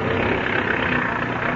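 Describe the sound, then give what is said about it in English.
An airplane engine roars steadily, a dense continuous drone with a rough rumbling texture that holds at an even pitch throughout, with no voices; the engine is turning over with the brakes set before takeoff. “Engine's turning over okay, Red.”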